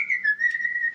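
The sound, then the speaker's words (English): Someone whistles a tune to open a door with a sonic key: a clear, steady note that dips slightly in pitch and then holds for about a second, fairly loud, with no talking. “He has to whistle a jaunty tune of some sort.”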